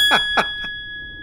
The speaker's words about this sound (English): There were a few other times I think we could have rang the bell this episode, but I'm going to ring it right now.